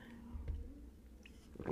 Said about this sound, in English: I'm taking a sip of tea first. Hold on.